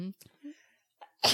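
A single loud sneeze bursts out at the end, sharp and explosive after a few brief murmured vocal sounds and a short quiet pause.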